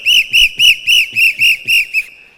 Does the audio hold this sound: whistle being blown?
yes